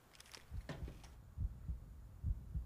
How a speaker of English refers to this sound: I hear the heartbeats now.